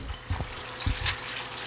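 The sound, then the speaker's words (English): An egg cracked into a preheated, oiled pan on an induction cooktop set to 200 sizzles and sputters: a steady, hissing fry broken by several sharp pops and crackles. No one speaks. “That's some pretty good sizzling and sputtering.”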